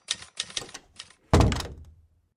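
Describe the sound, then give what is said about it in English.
A quick run of crisp typewriter key clacks, then one heavier, louder clunk that rings briefly and fades. Nobody speaks. “Oh, didn't we give him a typewriter?”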